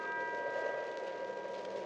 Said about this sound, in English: Oh. Not exactly a happy tinkle, but... I'm not sure for whom that bell's tolling, but I hope it's not for us. I hope somebody answers it soon.